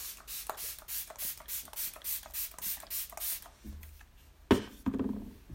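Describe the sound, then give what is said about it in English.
Soft, rapid dabbing of a makeup sponge against the skin of the face, about a dozen quick even pats in a steady rhythm, then a pause and a couple of louder rustling presses. The sponge presses setting spray into the skin, meshing it in with foundation. “it can be dry, damp, whatever, and I don't want to take any of my brows off while I'm doing that to press in the setting spray into my skin, so that I don't have like setting spray sitting on top of my face.”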